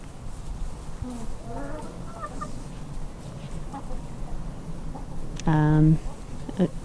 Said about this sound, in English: I can hear hens probably stealing the pigs, nicking the pigs' food.